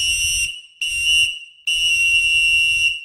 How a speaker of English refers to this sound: It's time to blow the whistle. Pool check!